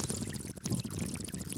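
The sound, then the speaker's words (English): Sloshing and gulping of someone drinking from a water bottle, a steady watery gurgle lasting a second or two with no talking. “You're literally drinking a bottle of water.”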